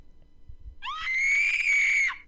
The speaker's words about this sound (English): Whoa, that's a little disturbing. A lady screaming Pennywise, like someone just kicked her off the plane, like out the door, like the just, loudest it was scream random out of nowhere I've ever heard.